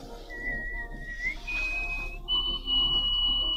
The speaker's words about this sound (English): She holds the Guinness Book of World Record for nose whistling. Look at this. Oh, man. And she's from Canada.